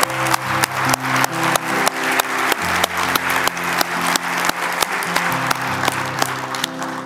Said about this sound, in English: There was about 4 or 5 people that had raised their hand for salvation today. I want to give them a big hand. Give God a big hand today.